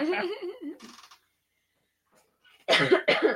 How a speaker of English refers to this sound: What's wrong? I keep coughing.